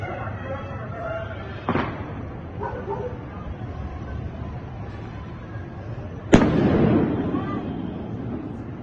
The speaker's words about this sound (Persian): ویدیوهای بسیاری از وضعیت زندان اوین در شامگاه 23 مهر منتشر شده و در یکی از این ویدیوها پرتاب شدن دو شی به سمت زندان اوین دیده می شود، سپس صدای انفجار به گوش می رسد.